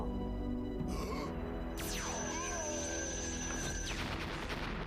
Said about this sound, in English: Whoa, did you see that explosion? It looked like it actually destroyed the suit.